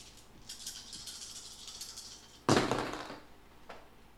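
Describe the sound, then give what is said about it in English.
Dice rattle in a hand or cup for about two seconds, then land with a sharp clatter that tumbles and settles, followed by one faint click, rolled in a game as a strength roll for a character's thunderbolt attack. No one speaks. “Alright, so roll again for your strength to have him do another thunderbolt.”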